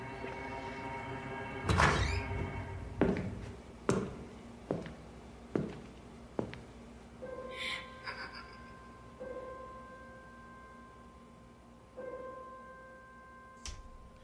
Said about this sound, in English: And what you heard there at the end of the PSA was actually a girl in a bathroom stall with her feet up on the toilet with her phone in her hand, listening to the sounds of the gunman's footsteps coming toward her.